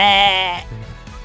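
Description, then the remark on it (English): A person does a loud, nasal goat bleat imitation, one wavering call lasting about half a second before trailing off into quieter voice murmurs. “I got a good goat call.”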